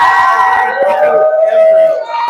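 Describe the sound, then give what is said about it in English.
An audience cheers and shouts continuously, a dense roar of many voices with higher whoops rising above it, loud and sustained for the whole stretch. “Was that you that started cheering?”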